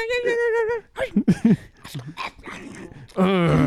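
A dog whimpers and yips: a drawn-out, high whine opens, a burst of short, sharp yips and whines follows, and another long whimper closes, fairly loud throughout.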